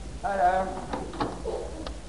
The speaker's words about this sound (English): I think I heard the back door.